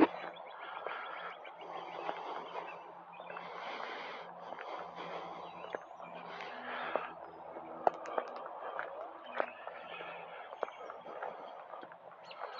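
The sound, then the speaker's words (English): Birds call outdoors on a beautiful, slightly cloudy day amid a busy, low-level ambience with kids screaming, scattered chirps and short sharp cries rising over a steady background wash, all fairly faint. “You hear kids screaming, birds yapping.”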